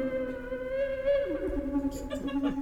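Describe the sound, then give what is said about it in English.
A wooden flute plays sustained, breathy notes with slow pitch bends, drenched in heavy reverb so it sounds distant and cavernous, with tones smearing into one another. “It sounds like you're playing in a cave 100 feet away.”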